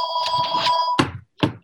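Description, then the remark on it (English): A telephone rings with a steady, warbling electronic tone for about a second, then stops with two sharp clunks, like the handset being grabbed and knocked about. “I don't know what's ringing. I really don't. Oh, wait, this is what's ringing.”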